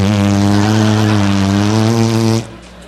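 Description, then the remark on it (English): A person loudly imitates an elephant's trumpet, the noise weaker elephants make: one sustained, buzzy, brassy blast lasting over two seconds that cuts off abruptly into quiet. “which is an elephant noise.”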